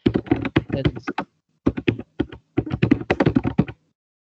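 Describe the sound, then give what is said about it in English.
Rapid clicking keystrokes on a computer keyboard, typed in three quick bursts separated by short pauses, fairly loud with no voices. “Typing sound. I'm trying to find out who the English language commentators are.”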